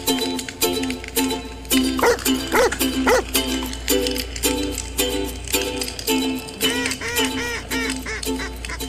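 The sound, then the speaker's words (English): A bird dog barks over and over in quick, loud bursts, some notes rising into higher yelps, with a steady low rumble running underneath the whole time. “So if you like sitting around a campfire with your favorite bird dog and two brothers from Michigan who love talking about upland hunting, this podcast is for you.”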